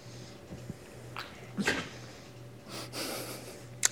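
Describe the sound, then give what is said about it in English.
Two dogs snort and breathe noisily in a few short, breathy bursts, with a sharper snuffle near the end, over a low steady hum. No one speaks. “These fucking dogs.”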